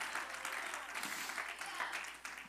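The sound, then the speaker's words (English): An audience at a morning service claps steadily and densely, with scattered shouts and voices rising through the applause at an even, sustained level. “Oh, you ought to clap your hands and shout a hallelujah this morning.”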